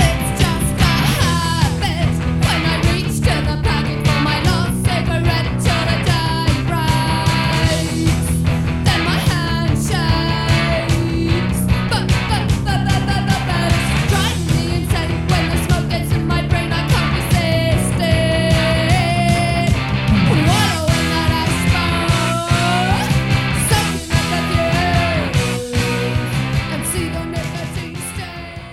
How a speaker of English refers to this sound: now we're going to take a listen to … from the album … by …